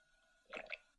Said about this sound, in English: Somebody swallowing. Ew. Mm-hmm. That's somebody gulping some water down quickly.